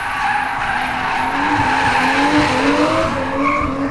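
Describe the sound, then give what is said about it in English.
A Volga V8 car does a burnout: tires squeal loudly and continuously over a high-revving engine for several seconds, steady, with no voices. “So basically, only the KGB could do sweet burnouts.”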